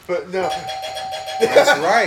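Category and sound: household object, doorbell ringing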